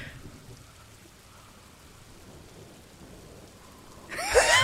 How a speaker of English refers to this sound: Just doing wind sounds? Just doing subtle wind sounds? I love it.